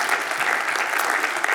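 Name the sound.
audience applause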